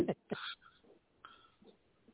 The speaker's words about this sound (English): I can hear a dog barking.